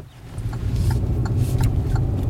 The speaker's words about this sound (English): Back in the car, we head up the mountain again.